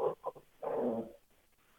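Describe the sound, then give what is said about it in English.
Dogs barking faintly: a couple of short, sharp barks followed by a longer, drawn-out bark or yelp, then quiet. No one speaks. “Man, those fucking dogs.”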